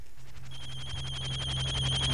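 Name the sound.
telephone ringing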